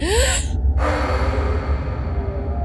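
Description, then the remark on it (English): A single sharp, startled gasp, loud and lasting under half a second and rising slightly in pitch, followed by a brief hush and then a steady low rumble of background noise, as someone looks into a room through a slightly open door. “Out of habit, Maria looked in and gasped.”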